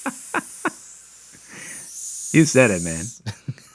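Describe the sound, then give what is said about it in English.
A person makes a sizzling hiss with their mouth, a steady airy tsss that follows a few sharp clicks and blends into a brief voiced sound, moderately loud. “The name's so hot it sizzles.”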